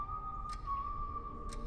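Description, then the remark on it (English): Someone whistles a tune, a long, mostly steady note that bends slightly in pitch, soft, carrying through a half-open bathroom door from a hallway, while two faint ticks sound about a second apart in the background. “He whistles Vector's song. The sound carries through an open door.”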